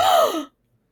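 A single loud, excited gasp from a woman, breathy with a voiced squeal that slides downward in pitch, lasting about half a second before cutting off into silence.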